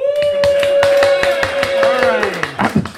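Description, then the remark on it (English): A crowd in a room in New Orleans, watching a football match, claps in a quick, uneven patter of sharp slaps for about three seconds, while a sustained voiced whoop holds steady, then slides downward near the end. “Clap again if you're enjoying the football match.”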